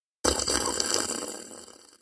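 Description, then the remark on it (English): A long, wet slurp of tea, starting abruptly and drawn out for nearly two seconds, airy and gurgling, then tapering off gradually. No one speaks. “It's just that you slowly slurping tea.”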